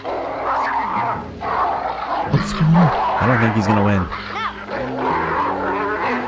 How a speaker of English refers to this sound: Attack. Uh-oh, everyone's starting to get a little concerned. This dog's got a little aggressive.